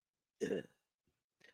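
A man clears his throat: one loud, rough, guttural rasp, followed a moment later by a softer, shorter grunt-like sound.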